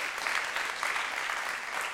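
Steady audience applause, a dense crackle of many hands clapping at once, sustained at an even moderate level for the full two seconds with no voices standing out.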